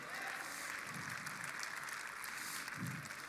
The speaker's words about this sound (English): I'll give the Lord a hand clap.